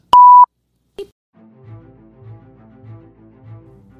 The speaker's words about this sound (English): And I'm actually going to hit the beep.